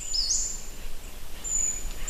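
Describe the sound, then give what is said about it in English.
Thin, high whistles of forest birds during mating season drift in briefly at the start and again toward the end, faint over a steady outdoor hiss with a low rumble underneath. “And the more birds, the fuller the orchestra, which reaches a kind of crescendo at the peak of the mating season.”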